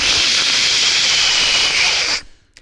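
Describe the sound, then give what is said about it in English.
A voice imitates the sound of a running shower as heard in videos filmed in the shower, a loud, steady hissing "shhh" held for about two seconds, then cuts off abruptly into near silence with a faint click. “You know what I hear when you're filming in the shower?”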